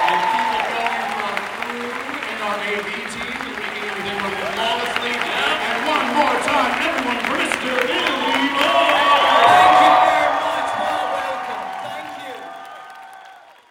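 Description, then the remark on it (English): A crowd applauds and cheers steadily for about twelve seconds for the American Sign Language interpreters, with shouts and whoops rising over dense clapping before the noise quickly fades out. “Can we get a round of applause for our American Sign Language interpreters?”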